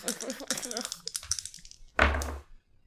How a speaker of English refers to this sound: So taking that strain and re-rolling those dice. You re-roll those dice.